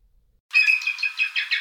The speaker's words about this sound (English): Bald eagle.